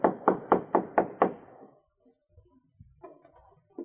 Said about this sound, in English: After nosing their boat into the beach, the travelers disembarked and walked up to the cabin. Art knocked on the door.